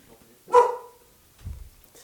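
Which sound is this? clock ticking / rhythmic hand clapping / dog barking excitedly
dog barking excitedly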